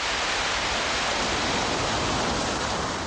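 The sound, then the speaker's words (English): A steady, unbroken roar of ocean surf on a beach, a dense hiss of washing water that stays level throughout with no distinct breaking waves. No voices. The beach recording was edited and manipulated on an early computer at Bell Telephone Labs. “They kept working until they felt like it captured the majestic sound and feel of the ocean.”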